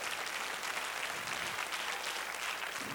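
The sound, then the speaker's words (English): An audience at the Palace of Praise claps steadily together as a hand clap of praise to the Lord, a dense, continuous wash of many hands applauding at once, sustained for the whole stretch without any talking. “If you believe that can happen, give the Lord a hand clap of praise.”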